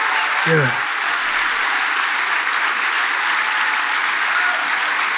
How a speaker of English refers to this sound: Yeah. That's a lot of applause. Please clap.